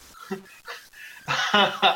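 A small dog pants in quick, breathy bursts, soft at first and then louder and more rapid over the last second.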